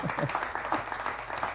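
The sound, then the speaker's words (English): A crowd claps together in a brief, steady burst of applause, a dense patter of many hands at moderate volume with a faint murmur of voices mixed in. “If you're going to clap, let's clap, right?”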